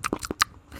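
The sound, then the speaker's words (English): Close-up ASMR-style wet chewing and crunching mouth noises right against the microphone: four quick, uneven bursts within a second, then a brief quiet tail. No talking. “ASMR, of course, is when you get closer to the microphone. You go, like I'm chewing.”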